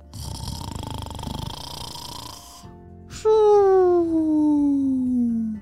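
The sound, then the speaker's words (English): A sound-asleep hippo snores loudly: a long, rumbling, raspy inhale, a brief pause, then a strong droning exhale that slides steadily lower in pitch. The sound stands alone, with no talking. “And a hippo, they can snore pretty loudly when they're sound asleep.”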